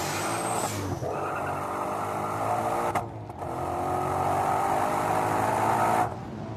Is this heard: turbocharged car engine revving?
yes